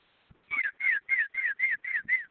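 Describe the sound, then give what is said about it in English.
A woman whistles an imitation of a cardinal's call: a quick, even series of about eight clear, slurred whistled notes, moderately loud, with no talking. “doing her cardinal call.”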